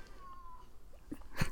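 A cat gives a soft, drawn-out meow that slides slightly downward in pitch, followed by a couple of brief rustling bumps. No one speaks.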